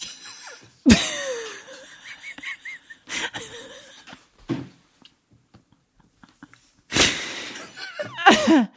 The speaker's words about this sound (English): Blow my nose.